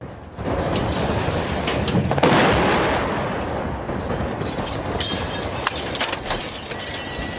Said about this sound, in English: The talks failed just hours after a Russian airstrike hit a maternity ward in the Ukrainian city of Mariupol. The reporters for the Associated Press were nearby when the attack happened and caught the explosion on camera.